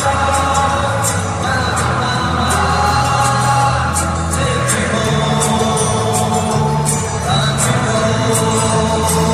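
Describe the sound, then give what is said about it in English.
A crowd of about 80,000 Germans with arms around each other sings a melody together, a dense, steady wall of massed voices holding and shifting through sung notes at a constant loud level for the whole stretch. “Listen to the crowd going at it here.”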